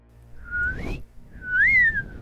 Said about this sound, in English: You blow the slide whistle, you hear a click.